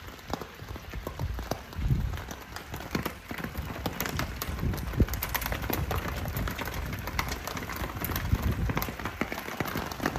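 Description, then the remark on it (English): Dense, continuous pelting of pea-size hail striking the ground and surfaces at a golf course in Estes Park, Colorado, a steady rapid patter of countless sharp taps with no pauses and no one talking. “1 minute, it's sunny and beautiful, and in about 5 minutes, we're getting pelted with like pea size or not quite marble size hail.”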